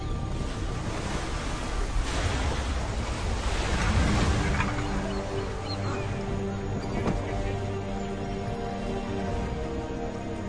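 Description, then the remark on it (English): Ocean waves surge and wash in a steady, broad roar, with a heavier swell building around the middle before settling into a continuous rushing wash, wind-like noise underneath. “Oceans of the 18th century, complete with beautiful vistas and a weather system that can change at any moment into heaving swells and pounding rain.”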